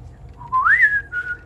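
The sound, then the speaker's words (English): A single clear human whistle rises in pitch, peaks, then holds a steady tone before a brief second burst, sounding like a signal call, fairly loud over a low rumble. “I can make a whistle from the tree.”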